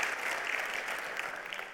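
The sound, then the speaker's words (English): A large church audience at Word of Life Church claps steadily and continuously, giving the Lord a round of applause: a dense, even wash of applause at a fairly constant loudness for the whole stretch. “Come on, let's give the Lord a round of applause.”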